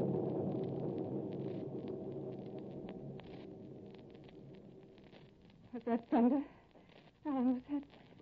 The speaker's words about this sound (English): It is thunder